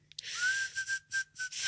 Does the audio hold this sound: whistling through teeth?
yes